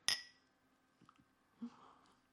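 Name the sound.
champagne glasses clinking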